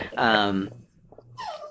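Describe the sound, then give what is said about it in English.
A dog lets out a couple of short, high-pitched whines at its owner, wanting to go downstairs, the first drawn out and wavering, the second brief and sliding downward, with a quiet pause between them. “I have a Cancer whining at me right now. buddy, you gotta go downstairs.”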